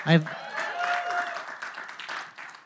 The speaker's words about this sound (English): And I'm sure you're, by the claps, I know you're appreciative of your church.